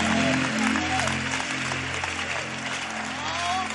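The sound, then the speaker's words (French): An audience applauds steadily for the Bible, a dense wash of clapping from many hands, with scattered cheers and voices rising above it throughout. “Clap for the Bible, the great word of God, the Bible that has been released into the world.”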